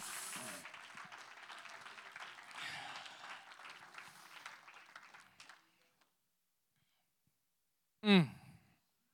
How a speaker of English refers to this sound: Oh, somebody clap your hands if you believe it.